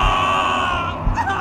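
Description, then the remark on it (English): Loud human screaming following a sudden flash, several high-pitched voices wailing together in a sustained, overlapping cry that holds steady for the whole moment, with no spoken words. “There was a sudden flash, followed by human screams.”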